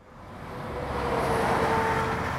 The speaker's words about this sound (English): We return to another busy street. This one even more crowded, with lanes of traffic, with these very large, fast-moving vehicles zipping, unheeding of anyone